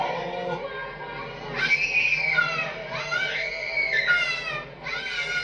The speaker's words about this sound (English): I like how every kid screams when they get in the Santa's lap.